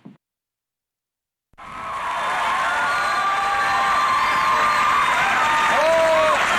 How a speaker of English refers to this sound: Hello. Thank you. Stop clapping. Calm down. Everybody calm down,